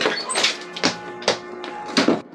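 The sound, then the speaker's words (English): A door marked private, off a small dim dining room, is opened: a few sharp clicks and soft thuds of the latch and wood, spaced unevenly over a couple of seconds, with no knocking beforehand and no one speaking. “Henry and I went through a small, dim dining room to a door marked private”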